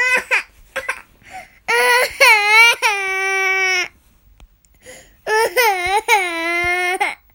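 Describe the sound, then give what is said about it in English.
A child cries loudly in two long, high-pitched wailing bursts separated by a pause, with short choppy sobbing sounds before the first wail. “Oh, look, everyone can hear you crying.”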